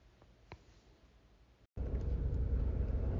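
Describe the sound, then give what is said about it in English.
A quiet stretch with a small click, then after a brief cut a steady, loud low rumble of road noise inside a moving car as the driver drives home fills the rest, with no one talking. “I'm actually recording this before I record the rest of the show because I'm driving home to record the rest of the show right now”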